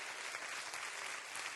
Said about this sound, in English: Clap your hands and rejoice at that right now. Rejoice at that right now.